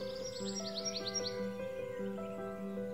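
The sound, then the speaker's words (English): Crows, Blacky the Crow and his aunts, uncles and cousins, raise a noisy fuss over in the big pine: a quick run of repeated bright calls in the first second, then scattered calls over a steady background drone, with no one speaking. “I wonder what Blacky the Crow and his aunts and uncles and cousins are making such a fuss about, said Peter Rabbit.”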